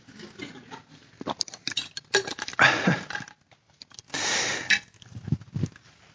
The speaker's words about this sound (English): So here's really the question that I wanted to ask, and for dramatic effect, let me take a sip of water.